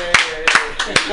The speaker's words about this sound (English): Let's give a round of applause for us.